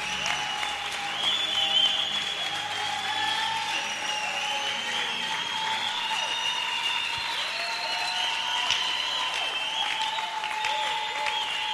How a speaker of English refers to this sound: Give the Lord a big clap offering.